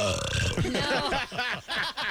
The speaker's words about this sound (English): She probably hangs with the boys sometimes and goes, right. You know, lets out a burp.